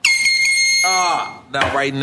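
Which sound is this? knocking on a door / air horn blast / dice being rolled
air horn blast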